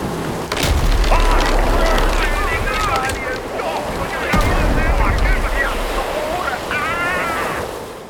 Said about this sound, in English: As Henry Tudor's small fleet neared the west of Britain, it was hit by a mighty storm. His ships were blown all the way down to Brittany.